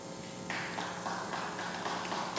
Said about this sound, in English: So that's where they're clapping, guys.